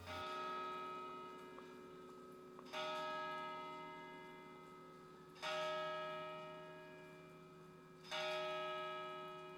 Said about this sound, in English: So he listened for the hour. To his great astonishment, the heavy bell went on from 6 to 7, and from 7 to 8, and regularly up to 12, then stopped.